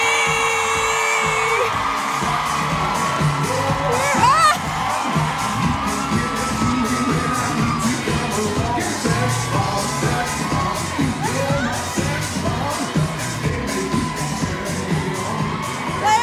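A large audience claps and cheers nonstop for about sixteen seconds as a guest is introduced, with loud whoops and shouts rising above the dense, steady applause.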